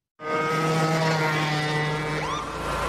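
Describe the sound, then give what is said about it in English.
A riding lawnmower engine roars loudly and steadily at high revs, going about 40 miles an hour in a residential area, with a droning, buzzy hum and a brief rising whine near the end. No one speaks. “Sure, but I'm on my lawnmower.”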